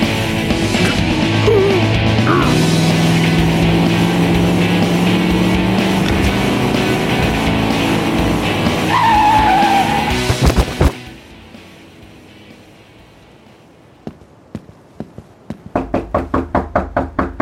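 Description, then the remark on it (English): A loud truck engine roars and climbs in pitch with a brief tire squeal, then cuts off abruptly, followed by quieter scattered knocks and a rapid run of clattering thumps. “Stop! Truck must stop!”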